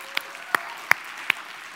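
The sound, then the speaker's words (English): Sparse clapping from the audience at City Life church: four sharp, evenly spaced claps ring out over a faint, steady background hiss, with no talking. “And on this GoFundMe, you can clap.”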